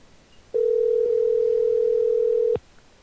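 A steady telephone dial tone after a hang-up, one continuous mid-pitched electronic hum holding at even loudness for about two seconds before cutting off abruptly. No one speaks.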